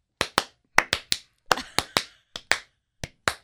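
About a dozen sharp hand claps in an uneven, off-beat rhythm, some in quick pairs and others separated by short gaps, with no talking.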